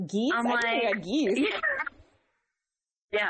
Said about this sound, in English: And a lot of geese that sound like chihuahuas.